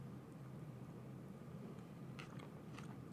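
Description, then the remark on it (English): Several sharp, crisp crunches from bites into a fresh traditional salad with cheese and bacon, arriving in a quick cluster near the end over a steady low background hum, with no talking. “Oh, I hear the crunch. It's fresh.”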